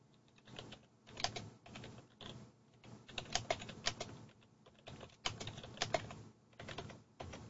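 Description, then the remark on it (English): Rapid, uneven clatter of keys being struck on a computer keyboard as someone searches for audio, with bursts of quick taps and brief pauses, no voices. “Sorry about all the typing noises.”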